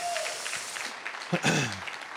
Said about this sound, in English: Can you guys give it up for Miss Callie Walker? You're about to see her right there. Can y'all give her a big hand clap?